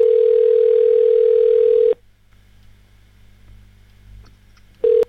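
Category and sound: signal or alarm, telephone ringing tone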